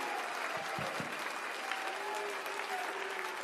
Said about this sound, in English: Would you clap your hands unto the Lord for the goodness that he's already done today and the miracles he's about to do.